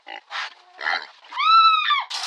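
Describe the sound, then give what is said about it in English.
The front half of a pig, loose in a gas station store, grunts in several short, snorting bursts, then lets out a long, high-pitched squeal before another rough grunt. Loud, with no talking. “Yes, I meant half a pig. Yes, a pig.”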